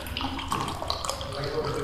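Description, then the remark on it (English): Coffee pours steadily into a cup in the morning, a continuous splashing trickle that lasts the whole moment with a slightly rising, filling tone. “Okay, we are recording and I'm pouring myself a little bit of coffee.”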